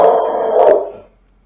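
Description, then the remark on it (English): A single drawn-out dog bark, fairly loud, lasting about a second before cutting off into quiet. No one speaks over it. “What the dog said. They started. The dog said no.”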